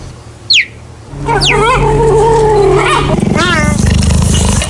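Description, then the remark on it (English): Cheetahs at Photo Wildlife Park growling and chirping: sharp, high bird-like chirps ring out over a steady low growl, which grows rougher and more rumbling toward the end, with no talking. “Cheetahs! The sound of cheetahs at Photo Wildlife Park.”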